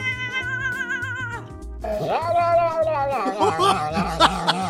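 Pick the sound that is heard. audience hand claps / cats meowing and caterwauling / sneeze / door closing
cats meowing and caterwauling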